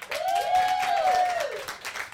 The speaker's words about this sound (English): Everybody, how you doing in the audience tonight? Good. Yeah, everyone's like, good. Thank you. You can just clap. Cheer wildly right now.